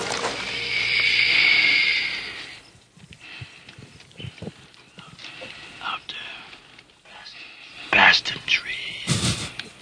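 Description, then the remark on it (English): A harsh, raspy predator growl rumbles loudly for nearly three seconds, then gives way to quiet scattered clicks and rustling, with a few sharp, noisy bursts near the end. “Cause you hear the predator growl.”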